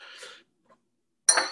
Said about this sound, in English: I need you to ring the bell.